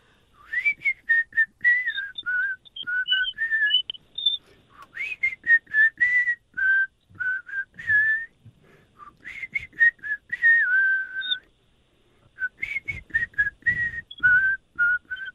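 Someone whistles a melodic tune for about fifteen seconds, phrases rising and falling with short breaths and a brief pause between sections, clear with no talking.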